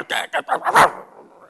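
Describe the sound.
A person imitates a kicked dog barking defensively: five quick, sharp barks in a row, growing louder toward the last, with a brief fading tail.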